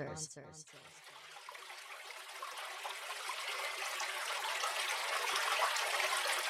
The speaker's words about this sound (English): The Hydrocore Purified Water System. Spring water from the tap. Crystal clear, clean, as tap runoff.